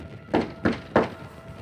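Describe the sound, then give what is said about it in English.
Three evenly spaced knocks of knuckles rapping on a wooden door in a hallway, solid, with a short quiet pause after the last one and no voices. “I rapped on the door again.”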